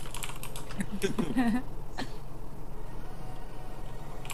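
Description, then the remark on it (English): A quick burst of computer keyboard typing, fairly clear, clicks along for about two seconds with a brief voice sound in the middle, then fades into a steady background hum. “Didn't type well enough!”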